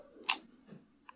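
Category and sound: clicking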